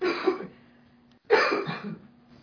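Two raspy coughs separated by a short pause, close and moderately loud, with no talking around them.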